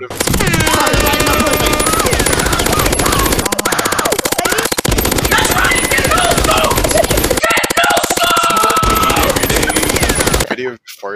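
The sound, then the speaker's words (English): A fireworks sound effect added in video editing: loud, dense rapid-fire crackling and popping like a barrage of fireworks, layered with blaring MLG air horn tones, runs nonstop for about ten seconds before cutting off abruptly. “Do like the MLG sound horn and a bunch of fireworks.”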